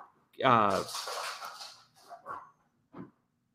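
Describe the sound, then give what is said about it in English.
A dog playfully tussles with a cat without either getting hurt: a sharp, whiny yowl, then a breathy hissing rush, followed by a few short muffled grunts and scuffles with pauses between. “Sorry, my dog is attacking my cat.”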